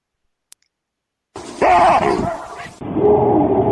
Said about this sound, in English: So this is the actual baboon bark.